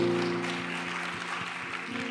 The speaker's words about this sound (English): Come on, give the Lord a giant hand clap of thanksgiving one more time. He's worthy.